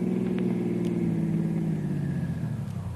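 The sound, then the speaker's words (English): A car engine hums steadily, then its low droning pitch sinks as the vehicle slows to a stop on a road, with a rumbling road noise underneath and no voices. “Stop the car.”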